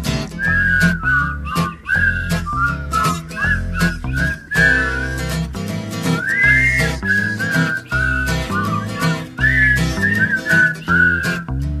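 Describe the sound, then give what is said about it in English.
A person whistles a bright, wandering melody, clear, over a steady backing of music with bass and light percussion, carrying on continuously without any singing or talking. “I can eat, kiss and spit, I can whistle a tune.”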